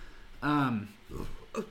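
A loud, drawn-out belch with a throaty, falling pitch lasting about half a second, followed by a couple of shorter, rougher guttural bursts.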